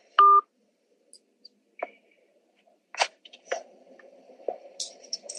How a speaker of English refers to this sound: He just hung up the phone.